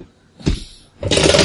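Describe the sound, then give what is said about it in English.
Dice rolled for a perception check clatter down through a dice tower: a short rattling knock, a brief pause, then a dense, bright burst of tumbling clicks that rattles on steadily to the end. “I'm using my dice tower no matter what.”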